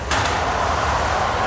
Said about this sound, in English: Jack! Get the fucking door open now!